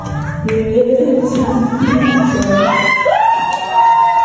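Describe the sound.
A crowd of people yelling and whooping together at a stripper dancing on elderly men in wheelchairs, with many overlapping voices rising in pitch, loud and continuous throughout, with a scattering of claps mixed in.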